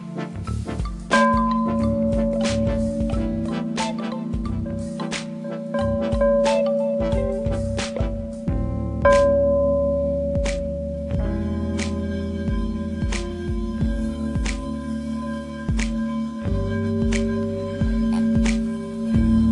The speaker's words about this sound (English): And I'm playing a really big singing bowl. It's a low A.